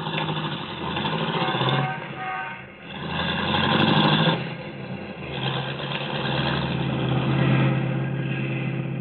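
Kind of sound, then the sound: vehicle, car engine running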